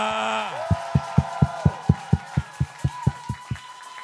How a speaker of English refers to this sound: Clap your hands and give God a shout of praise.